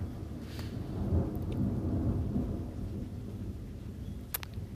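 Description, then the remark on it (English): A low, rolling rumble of thunder swells and fades over several seconds, with a steady hiss of rain underneath and a few sharp drips near the end. “There's thunder there.”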